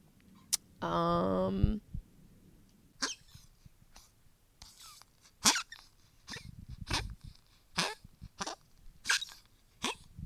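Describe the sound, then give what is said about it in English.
A dog lets out a brief whiny squeal, then a long run of short, irregular snorting grunts and huffs, fairly loud, with no talking. “I mean, what am I going to do with this dog?”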